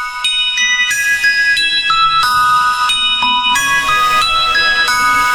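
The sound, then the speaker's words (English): The new 2020 Good Humor ice cream truck jingle plays on bright, tinkling bell-like chimes, a steady looping melody of clear, ringing notes with no voices. “Those bells don't have the bass. They don't have the subwoofers, but they do have delicious ice cream.”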